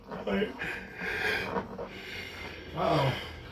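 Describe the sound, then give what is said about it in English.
A long, breathy yawn with a voiced, wavering groan that swells early, eases off, then rises again near the end before trailing away. “I hear yawnsies. She yawned too.”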